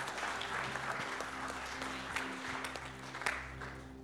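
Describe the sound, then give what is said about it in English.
A crowd applauds steadily with dense, continuous clapping, joined by scattered cheers and whoops rising over the noise; a low steady hum sits underneath throughout. “would you come forward and give her a huge cheer?”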